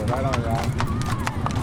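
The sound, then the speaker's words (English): Horse hooves clip-clop on pavement in a steady, even rhythm of sharp knocks as striking union members ride horses on a picket line outside Disney Studios, while a crowd of voices murmurs and calls in the background. “Outside Disney Studios last week, union members walked and rode horses on the picket line.”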